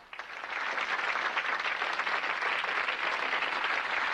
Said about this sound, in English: Yeah, clap now. Wait till you hear what I have to say before you applaud.